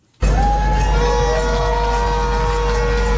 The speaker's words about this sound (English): Vast crowds of protesters have gathered at Plaza Italia to take part in the march. Organisers say it's the biggest that Chile has ever seen. The square and streets surrounding it are packed with people waving banners and demonstrating peacefully.